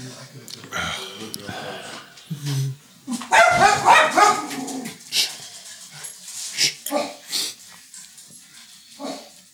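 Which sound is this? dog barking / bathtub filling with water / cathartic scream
dog barking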